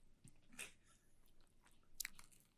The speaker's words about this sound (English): To all the audio listeners that are just listening to chewing right now, I promise I will do my best to get rid of that.